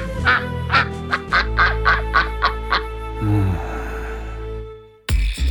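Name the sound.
duck quacking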